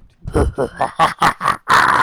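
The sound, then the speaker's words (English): A person imitates a monkey with a quick run of about seven loud, voiced grunting hoots that rise in pitch and end in a longer, shrill cry. “What the hell was a monkey?”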